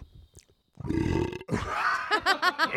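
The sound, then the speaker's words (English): A loud, deep burp right up against the microphone, rumbling for about half a second, then a longer, croaky, drawn-out belch ending in a few short, rhythmic pulses. “I want to burp in this shit.”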